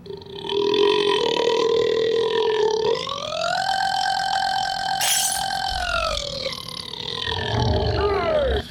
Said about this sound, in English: Well, right now I'm going to go for another restaurant record. Longest burp.